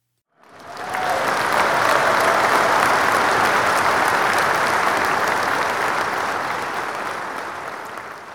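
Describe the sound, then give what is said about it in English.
A crowd breaks into loud, dense applause and cheering that starts abruptly and holds steady for several seconds before easing slightly at the end, with no talking over it. “So the actual number came in at 0.23% on the core, and the crowd went wild.”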